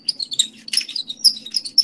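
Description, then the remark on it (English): A G1 plastic toy figure's hip joint squeaks repeatedly, a quick series of shrill, chirpy creaks as the hips are twisted around, over a faint low hum and with no talking. “Nice G1 squeak there.”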